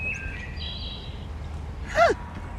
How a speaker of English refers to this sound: It's a wood thrush.